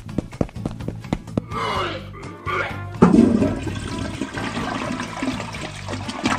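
A few sharp knocks and clicks lead into a toilet flush, a loud rush of swirling water that surges in at once and keeps churning steadily to the end.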